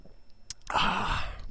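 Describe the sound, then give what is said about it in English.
A short wet click followed by a breathy, airy sip-and-exhale lasting under a second, as someone takes a drink of water. Nobody speaks. “Hold on a second. Drink of water here.”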